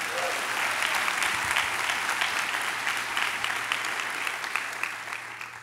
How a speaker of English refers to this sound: Could you clap your hands for God's word?